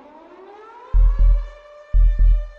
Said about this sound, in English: You suddenly wake up to the loud growling of a tactical vehicle. Must have left your window open.